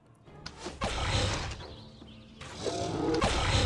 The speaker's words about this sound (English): Ooh, a dire wolf.